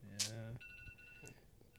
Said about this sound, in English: You guys gotta go or something? That's my eating alarm.